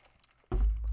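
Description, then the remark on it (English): Loud crunching of ice being chewed with the teeth bursts in after a brief quiet moment, a heavy, grinding crunch that continues to the end. “I have a bad habit of chewing ice.”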